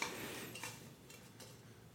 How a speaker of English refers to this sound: I decided to get an ice cube and pour a whiskey.